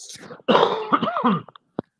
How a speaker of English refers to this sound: Excuse me while I cough.